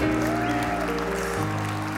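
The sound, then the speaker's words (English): An audience claps steadily, giving the Lord a hand clap of praise, in a dense, continuous wash of applause, underlaid by sustained organ or keyboard chords that shift once partway through. “Come on now, give him a hand clap of praise in this house.”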